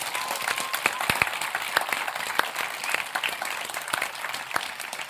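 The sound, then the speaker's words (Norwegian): A crowd on an island applauds steadily for the people who run the island with the work crews, many hands clapping in a dense, continuous patter with sharper individual claps standing out, moderately loud, with no one speaking. “Jeg synes egentlig faktisk vi skal gi en applaus til de som driver øya med arbeidsgjengene.”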